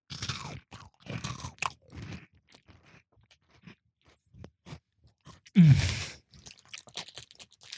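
Crunchy chewing of small circular biscuits with little pandas on the front, from a snack pack: a rapid series of crisp, irregular crunches with scattered clicks, then a louder burst of crunching with a low hum, followed by softer chewing.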